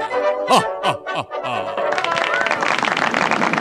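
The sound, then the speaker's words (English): A burst of hearty laughter gives way to steady, dense clapping that fills the second half, fairly loud, continuing to the end. “Well, I'm a clap on that one this time.”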